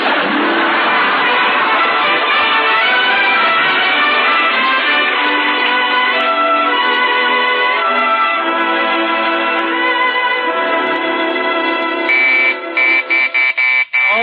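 A doorbell rings loudly and insistently late at night, a harsh, steady buzzing tone held for many seconds, then broken into a few short, rapid bursts at the end. No one speaks.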